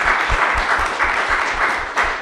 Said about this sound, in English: And most of all, our panelists, so let's give them a nice round of applause.